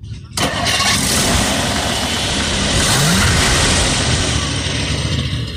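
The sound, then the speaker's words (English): After a moment of silence, a 1959 classic car with split pipes and factory exhaust with silencers turns over and catches, then settles into a steady, smooth, quiet idle, its low rumble holding evenly to the end. “Would you mind starting it up? Sure. Can I give a listen to the rumble?”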